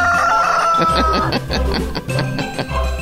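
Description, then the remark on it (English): A rooster crows once in a long, strained call near the start, followed by a busy stretch of clucking and rustling with a low rumble underneath. “That's the cock.”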